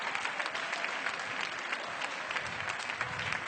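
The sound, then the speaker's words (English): A church audience applauds steadily, clapping to thank God for the preaching, a dense, continuous patter of many hands clapping at an even loudness for the whole stretch, with no voices rising above it. “Clap your hands and thank God that somebody preached to you.”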